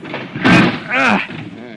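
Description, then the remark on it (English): The smashed, jammed door of a crashed car is pried and pulled off in two loud, wrenching bursts, the second mixed with a strained, groaning tone, before things settle into quieter rustling. “That got the door off.”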